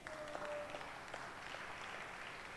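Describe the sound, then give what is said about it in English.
A crowd applauds steadily, many hands clapping at once in a dense, even wash of sound that holds at a constant level throughout, with a faint tone briefly sounding early on. “Oh, it's a good place to clap.”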